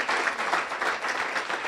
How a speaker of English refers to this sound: We have a couple that are serving here currently right now. Let's give a round of applause for those that are currently serving.